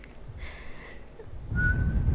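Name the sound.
person attempting to whistle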